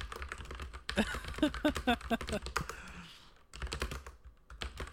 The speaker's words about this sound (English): Well, I can hear the typing loud and clear.